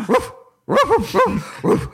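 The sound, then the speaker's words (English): A dog named Ubu barks loudly, about six sharp barks in quick bursts with a short pause after the first, with no one talking over it. “Good dog.”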